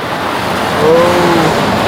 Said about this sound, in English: And then listen to this. Listen, it's the sounds of traffic.